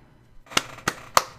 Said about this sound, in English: Yes. You're clapping.